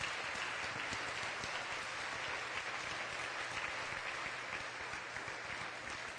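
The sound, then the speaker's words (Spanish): A church audience claps for the Lord at a bilingual English and Spanish service, steadily and loudly throughout. It is a dense, continuous wash of many hands with no pauses, sounding almost like heavy rain. No voices stand out over the clapping. “Let's give the Amen. Lord another clap offering.”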